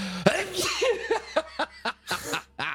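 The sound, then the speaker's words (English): A sudden sneeze, followed by a string of short, breathy bursts that sound like stifled laughter or follow-up snorts. “That was a random sneeze there, folks.”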